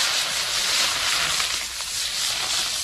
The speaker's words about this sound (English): So I'm gonna start off by adding some whole butter. Ooh. Butter. Can you hear that sizzle?